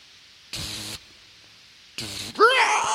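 Two heavy, distorted rock chords ring out with a pause between them, then a loud, screeching Godzilla roar with wavering pitch cuts in over the music and holds to the end.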